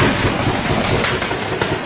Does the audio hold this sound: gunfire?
yes